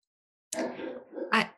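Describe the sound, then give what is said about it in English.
A dog barks twice in quick succession, a sharp bark followed by a second, louder one, with no talking. “The dog agrees to you.”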